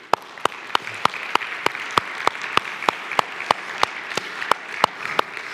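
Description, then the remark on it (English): An audience applauds steadily, a broad wash of clapping with sharp, evenly spaced claps standing out about three times a second, moderately loud throughout with no voices. “And can we just give her a hand?”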